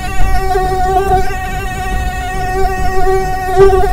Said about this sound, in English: The mosquito dey pass pass. The Big Mosquito dey disturb.